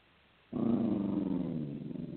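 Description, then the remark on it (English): A dog growls low and steadily for well over a second, a continuous rumbling snarl that starts abruptly after a moment of quiet and fades slightly toward the end. “I don't know if you can hear my dog growl.”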